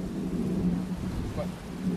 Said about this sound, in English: It's windy in every direction, baby. It's like we're at the center of a cyclone. That's very windy.